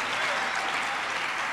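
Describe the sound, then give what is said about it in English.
A church audience claps their hands for the Lord in a steady, dense wash of applause, loud and continuous throughout, with many overlapping claps blending into a bright, even roar. “Clap your hands for the Lord tonight.”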